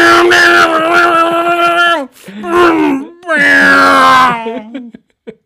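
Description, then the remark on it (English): A voice imitates the loud, droning roar of NASCAR race cars without mufflers, in three sustained buzzing bursts with a brief dip between them, trailing off into a few short sputters. “They don't use mufflers on those cars.”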